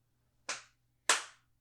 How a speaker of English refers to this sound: That was me clapping out of joy.